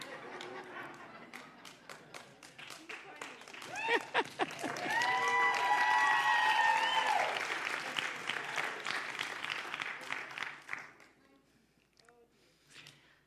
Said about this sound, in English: Come on now, you're clapping better than I'm preaching this morning. I'm preaching better than you're clapping, sorry.